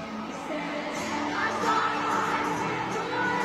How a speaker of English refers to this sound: You can't hear her. It's like all the people screaming. That's insane. Look at that stadium, yeah. Dude. It's a sing-along concert. Definitely. A scream-along.